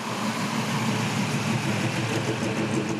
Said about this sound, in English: Thursday, day one of the lockdown. There seem to be a lot of cars on the road, on State Highway 2 across there and just everywhere.